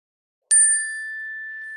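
A single chime is struck once during an online gathering held over Zoom, its bright metallic tone ringing out clearly and sustaining with a slow, gentle decay. No voices accompany it.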